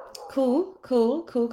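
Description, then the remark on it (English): A neighbor's dog barks three times in a steady rhythm, each bark a short, tonal yelp with a rising pitch, fairly clear, with no one speaking. “And of course, the neighbor's dog has decided now it's going to start barking.”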